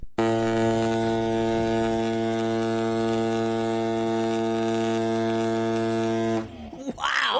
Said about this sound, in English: And if you've got a car hooter or anything, you can send it to us, because I find the podcast world can't have enough of people playing sound effects of hooters.